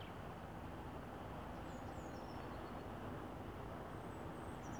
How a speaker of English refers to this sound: So you're going to start by just listening to all the sounds that there are here in the background. And just allow each of these sounds. There's birdsong. There's the river flowing.